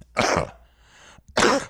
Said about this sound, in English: Why do I sound different? You sound way different. Really? Yeah. Yeah, like I do feel like maybe I should clear my throat a little bit.